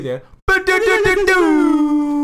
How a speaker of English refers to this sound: Cue the air horns.